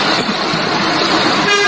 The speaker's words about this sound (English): This convoy hit Dover as the men who fed our nation begin to flex their muscles. And this is just a video of the tractors driving through.